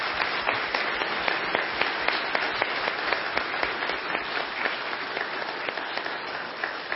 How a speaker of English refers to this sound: Let's tell these guys thank you with a little round of applause. Thank you, fellas.